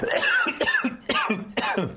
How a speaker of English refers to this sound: You're coughing when I eat the lemon. It breaks you that much.